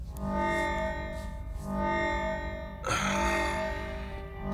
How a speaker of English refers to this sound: That's the perimeter alarm. The guards have someone.